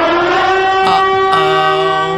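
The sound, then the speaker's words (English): A loud civil defense siren sound effect wails continuously with a steady, harmonic-rich tone that briefly shifts pitch partway through, filling the whole moment with no voices. “I just really wanted to play the siren effect.”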